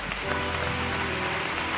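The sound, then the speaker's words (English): A church audience claps steadily to welcome new members, a dense, continuous wash of many hands, with faint sustained musical tones humming underneath. “Church, let's give them a great clap.”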